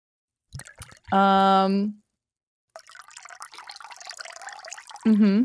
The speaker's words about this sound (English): I was pouring out a little bit for Mr. Two